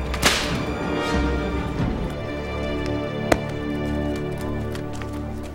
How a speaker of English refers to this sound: And they went up and slapped him.